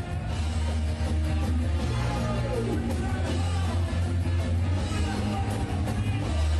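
A loud, distorted phone recording of a band playing live at a gig, with heavy, steady bass and a wall of noise, a man on stage screaming and yelling over the band throughout, crowd noise mixed in.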